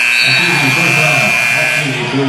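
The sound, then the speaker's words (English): A loud, steady arena buzzer blares without a break for the whole stretch, with crowd noise and talking voices running beneath it, sounding at a basketball game at the end of the second quarter, before halftime, as a floater at the buzzer goes in. “Green now the floater at the buzzer. And it's good.”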